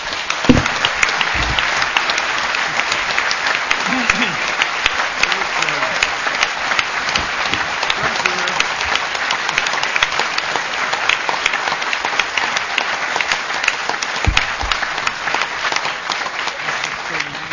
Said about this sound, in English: Notwithstanding all that, I am going to stop him when he gets to 5 minutes, but please, a very big round of applause for Neil Kinnock.